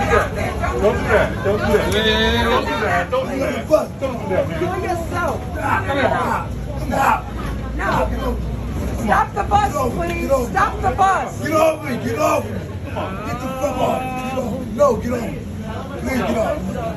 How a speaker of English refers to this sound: This is a bus, but this is a New York City bus. Look at this.